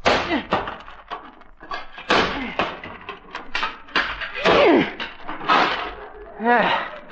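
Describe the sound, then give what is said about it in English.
A man smashes a sledgehammer into the wooden post holding a hammock on the front lawn again and again, heavy irregular thuds and cracks, while voices exclaim and talk between and over the blows. “Jug, hand me that sledgehammer.”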